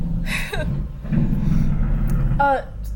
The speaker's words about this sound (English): Wow, that truck is loud.